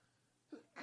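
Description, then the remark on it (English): A single sneeze: a short voiced intake, then a sharp, breathy burst that cuts off, with no talking around it. “Bless you. I'm really sorry, guys.”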